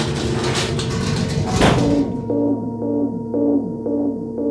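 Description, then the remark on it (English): A burst of rattling clatter gives way to an exospheric disturbance alarm: steady electronic tones pulsing in a regular repeating pattern, each pulse ending in a short downward-sliding chirp, with no voices. “K9, that's the exospheric disturbance alarm, and I'm rather busy.”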